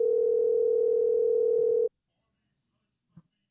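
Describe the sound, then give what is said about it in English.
A steady, loud telephone dial tone after a phone call disconnects hums continuously for almost two seconds, then cuts off abruptly into silence, followed by a single faint click or bump. “I got disconnected.”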